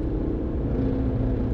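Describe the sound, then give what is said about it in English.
A loud motorcycle with loud pipes passes right beside a car on a road trip, its engine rumbling steadily, deep and throaty, with a faint higher drone rising partway through; the level stays constant and nobody speaks. “That certainly is loud. Crazy how you didn't hear him until he was right next to us.”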